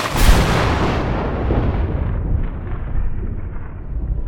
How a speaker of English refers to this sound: And in that moment, I swear, I heard and felt my fear becoming manifest. The deck seemed to hum and vibrate under my feet, and a thunder rolled up from the black water.